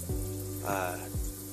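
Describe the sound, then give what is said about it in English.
A steady, hissing spray of shower water runs throughout, with a low hum and a brief murmured voice rising over the rush in the middle. “I'm in the shower”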